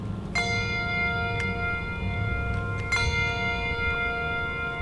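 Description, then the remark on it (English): Hand bells, picked up by the minister's wife to start a Sunday church service held in the parking lot of First Christian Church of Mayfield the day after a tornado destroyed the building, ring out in a few separate strikes, each bright metallic tone slowly fading over a low background rumble. “The minister's wife picked up the bells to start the service.”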